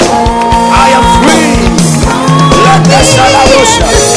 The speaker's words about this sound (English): Clap your hands for Jesus now. Thank you, Jesus.